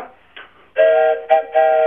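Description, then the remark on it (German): A passing train sounds its horn: a faint tone, then a loud sustained blast broken by a brief dip and another burst, piercing with no voices. “hier ist gerade der Zug durchgefahren.”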